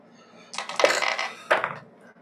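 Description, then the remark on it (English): Dice clatter across a hard table in a quick rattling tumble for a perception check, then a second shorter clatter follows a moment later. Fairly loud, with no voices. “What were we rolling? Perception.”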